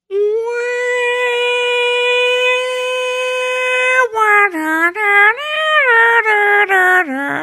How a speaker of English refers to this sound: Get that cat out of here.